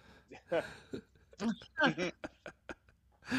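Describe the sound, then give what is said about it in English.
A voice imitates zombie breathing: an uneven series of raspy, voiced gasps and groans, about eight or nine short bursts in quick succession. “I would almost say that if you do that kind of breathing, if it's zombie, you were just like, hey man, I'm living the moment.”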